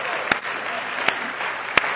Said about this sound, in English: Clap your hands like you really mean it unto the Lord today.